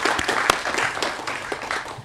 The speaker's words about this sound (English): And everybody, please join me in giving our great panel a round of applause. Thank you so much.